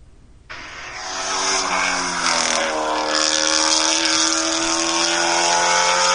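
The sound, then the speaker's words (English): A car engine roars loudly past with a raspy, race-car-like exhaust note, revs climbing and holding steady, sounding slightly tinny as it plays from an iPhone-recorded video held up to a microphone. “That's just an iPhone camera drive-by.”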